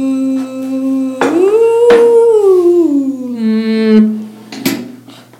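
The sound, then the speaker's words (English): A dog howls in one long, loud cry that swells upward and slowly sinks again, with a couple of sharp knocks on a door breaking in along the way. “The dog suddenly comes in.”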